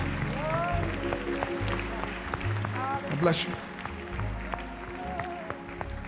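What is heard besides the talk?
audience cheering and applauding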